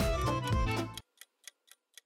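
A timer ticks four times, sharp evenly spaced clicks about a quarter second apart, right after a loud burst of music cuts off. No one speaks.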